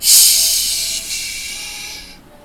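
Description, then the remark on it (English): A voice makes a long, breathy "shh" shushing hiss, loud at the start, briefly renewed partway through, then trailing off into quiet after about two seconds. “All that he did was shh.”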